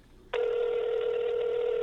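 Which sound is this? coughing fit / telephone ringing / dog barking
telephone ringing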